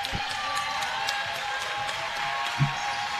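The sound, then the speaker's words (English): The PCA basketball arena crowd cheers and applauds in a steady, dense roar during a Lions versus Cougars game, with scattered claps and a brief low thump partway through; no one speaks. “This PCA crowd beginning to feel it a bit.”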